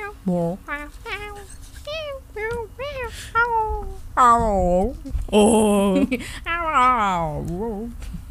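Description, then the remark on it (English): A person imitates a cat, first with a quick run of short, high meows, then a few longer, drawn-out meows that rise and fall in pitch, fairly loud. “Yeah, actually, really, cats are looking back if I make a sound.”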